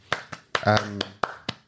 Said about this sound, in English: No, he deserves a round of applause.